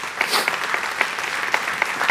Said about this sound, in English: 318 people in 2023, and we started it in July. Come on, you can clap at that. Amen.